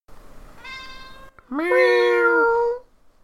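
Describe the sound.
A voice imitates a cat meowing twice: a soft, short meow followed by a louder, drawn-out one with a rising, whiny pitch.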